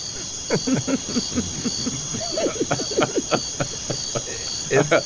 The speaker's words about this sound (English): Crickets.